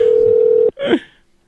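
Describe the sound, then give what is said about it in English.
A steady, loud telephone dial tone hums for about half a second, then cuts off abruptly, followed by a brief electronic dialing tone that fades out quickly, as a phone is dialed to call porn star Siri. No voices. “Dial your phone.”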